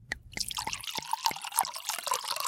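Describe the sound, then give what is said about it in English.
Boxed wine poured into a glass, a steady trickling stream broken by quick bubbly gurgles and splashes for a couple of seconds, with no talking. “Sweetums, pour me another glass of boxed wine, please.”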